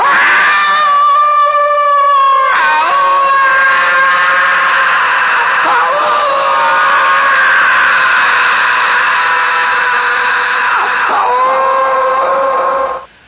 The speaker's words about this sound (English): Jungle fell silent as the echoing sound of the immense victory cry of Tarzan the ape man rang out, and the jungle knew that the killer had killed again.